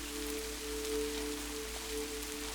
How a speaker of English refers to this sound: You realize the rain has been a consistent companion of yours since childhood. This beautiful, soothing sound has been there during many moments in your life.